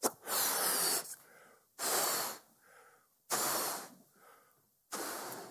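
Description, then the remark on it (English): Someone blows up a balloon that is wet on the end in four strong, breathy puffs, each lasting about a second, with quieter inhales in between. The rhythm is steady and nobody speaks. “So what happens when I blow up this balloon?”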